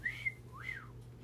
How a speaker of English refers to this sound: It reached from her hand to her elbow. She whistled.